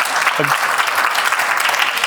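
An audience applauds in a dense, steady burst of many hands clapping, loud and continuous, with a brief vocal cheer near the start.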